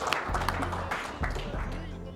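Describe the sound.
An audience claps in a steady round of applause, a dense wash of overlapping hand claps at moderate loudness, with a voice speaking over it.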